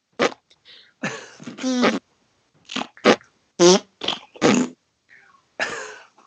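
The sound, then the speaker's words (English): A rapid string of about nine short, sputtering fart noises, fairly loud, seemingly blown by mouth and presented as stairs farting, with brief pauses between the bursts and no talking. “These stairs fart.”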